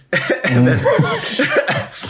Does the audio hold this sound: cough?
yes